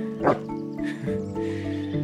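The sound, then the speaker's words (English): A hungry wolf vocalizes, opening with a sharp, loud yelp and sliding into a sustained, wavering whine-like moan that holds steady for about two seconds, with no one talking. “I know you're hungry.”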